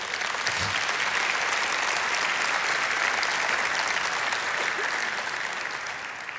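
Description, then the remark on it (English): An audience applauds the Lord steadily, a dense, even wash of many hands clapping at a loud level throughout, tapering slightly at the very end, with no voices standing out. “Let's appreciatively applaud the Lord for”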